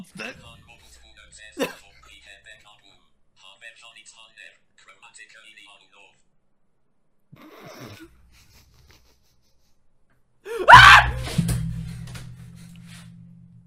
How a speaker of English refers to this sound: Hold on, I'm gonna play the Satan sound